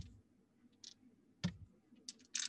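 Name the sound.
two dice being rolled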